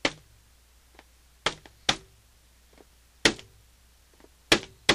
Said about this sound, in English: I will give him the secret code knock. Ready? Here goes.